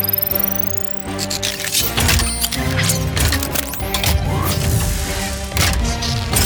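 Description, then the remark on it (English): A loud, busy vehicle transformation effect as a vehicle transforms into a superboat able to go in water: whirring servos, metallic clanks and clicks, and rising mechanical sweeps layered continuously for several seconds, with no voices. “Initiating superboat transformation.”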